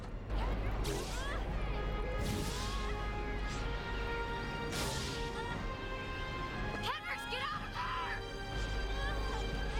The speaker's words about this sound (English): That was a real scream.